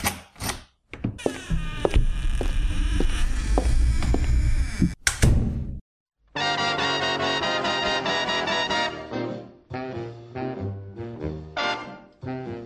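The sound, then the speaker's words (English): A door opens with a rattling, noisy rush and shuts with a sharp thud; after a brief pause, music with a sung melody begins and carries on to the end. “The door opens and shuts.”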